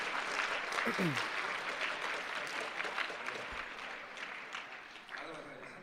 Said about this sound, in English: So let's applaud these angels for what they're doing for us right now.